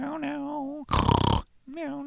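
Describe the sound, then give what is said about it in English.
A human voice imitates a pig, a harmonic nasal tone broken by a loud, rough, pulsing grunt in the middle before the voiced tone returns, fairly loud. “Do not miss your chance to make a pig noise.”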